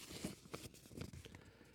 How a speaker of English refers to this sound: I have the bucket. Let me shake it up. And let me pull out a piece of paper.